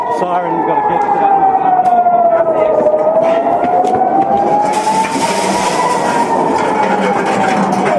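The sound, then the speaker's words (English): A rocket warning siren in Israel wails steadily for the whole stretch, its long tone sliding slowly down, then back up, loud and sustained over a bed of rough outdoor background noise. “While we were filming, the sirens began again.”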